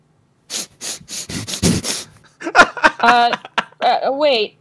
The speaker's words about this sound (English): I like your, like, heroin injection sniffs.